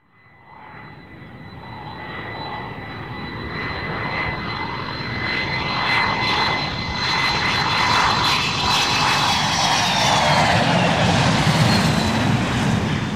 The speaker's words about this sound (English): Alright, I'm bringing her up to 30,000, one of those things. Feet? Yeah, 30,000 of them. I'm gonna bring the plane up to 30,000 feet and, breaking through the clouds right now.